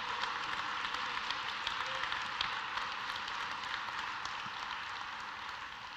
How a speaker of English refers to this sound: Now we applaud and we celebrate.